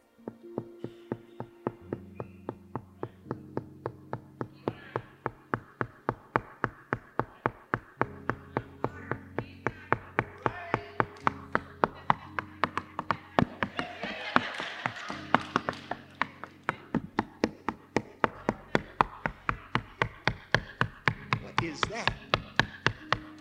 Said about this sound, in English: You never knock on a door this way. What's that? A bird flew into the house. That was no knock.